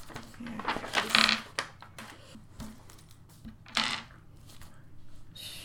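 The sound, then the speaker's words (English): A handful of dice clatter and rattle, with sharp clicks and two louder bursts of tumbling as they are moved and rolled across a hard surface, with faint murmuring underneath. “He's moving a lot of dice.”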